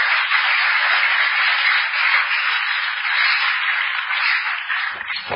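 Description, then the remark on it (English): A crowd applauds for the Lord steadily for about five seconds, a dense, even wash of many hands clapping together with no pauses and no voices, stopping abruptly at the end. “Oh, give the Lord a wonderful clap of him.”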